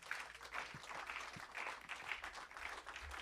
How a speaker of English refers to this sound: Come on, clap your hands, all ye people, and shout unto God with a voice of triumph.